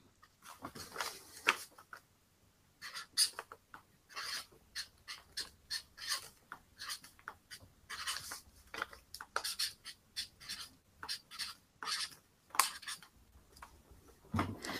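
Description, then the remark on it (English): A pen scribbling on paper in quick, irregular scratchy strokes as someone writes quiz answers, quiet, with short pauses between bursts and no voices. “I don't know how much of the text is scribbling is picking up on the mic.”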